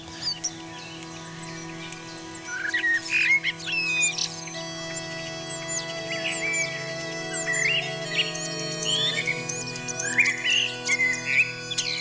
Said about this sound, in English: Accompanied by starlings and blackbirds